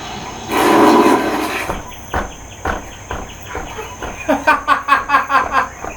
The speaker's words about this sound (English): And that was gorillas farting.